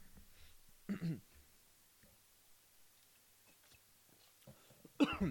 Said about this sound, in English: Sorry. Had a bit of a cough today. I'm not getting sick. I hope I'm not getting sick anyway. I've just every now and then having to clear my throat today.